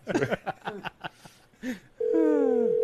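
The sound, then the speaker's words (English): Brief bursts of voices and laughter give way to a steady, loud electronic telephone-line tone that holds unbroken to the end, with a faint sliding whine beneath it. “I could have sworn I heard a phone”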